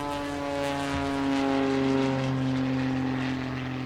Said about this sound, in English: Well, I drove down to the San Mateo Airport, found the Cranston Flying Service building, and got out of the car and waited. It was a nice afternoon, so I stood watching some of the planes take off and land.